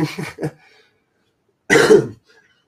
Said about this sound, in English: Excuse my bad cough. Again.